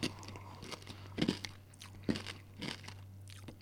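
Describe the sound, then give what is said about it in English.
Crisp crunching from someone chewing food, with several sharp bites spaced irregularly over a low steady hum and no talking. “I know y'all hear me crunching.”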